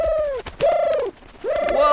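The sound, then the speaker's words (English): A pigeon named Reggie coos three times in a row, each call a rounded, throaty note that swells and then dips in pitch, loud and clear with short gaps between and no voices. “I'm not exactly picking up what you're saying, mostly because I don't speak pidgin”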